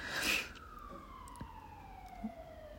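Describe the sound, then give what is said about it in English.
An emergency vehicle siren passes by, its steady wail sliding lower in pitch as it moves away, soft against a low background rumble with no one talking. “And as the sirens go by and I'm sitting here, for the first time in my adult existence, feeling okay with being here.”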